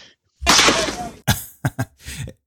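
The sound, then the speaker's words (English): A loud Foley bat crack on a baseball from a baseball movie, hit by the big slugger Frank Thomas, with a rushing whoosh as the ball flies off, followed by a few more sharp, snappy impacts in quick succession. “Yeah, listen to that ball fly.”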